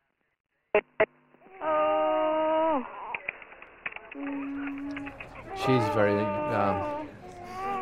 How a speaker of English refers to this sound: I can hear the child crying. I can hear her upset about it. And, yeah, they're in unison with being upset here. But we'll be with them soon. It's crying well. It's getting good air in.